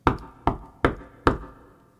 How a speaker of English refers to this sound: Just then, he heard a knock on the door.